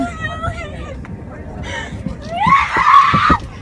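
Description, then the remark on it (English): A woman's high, strained voice rises into a loud yell toward the end, sounding upset and distressed, with a murmur of other voices underneath. “Okay, she's in distress. No, that's a psycho yell.”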